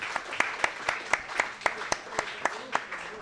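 Applause from a live audience for the host, with sharp, distinct claps landing in a quick, fairly steady rhythm over a low wash of crowd noise, lasting a few seconds.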